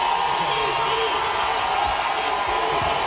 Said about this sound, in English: But it's crazy to be at an award show for music and probably the biggest cheer of the night. Not even probably. It was the biggest cheer of the night. Went to an athlete.